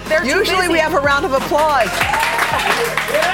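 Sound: round of applause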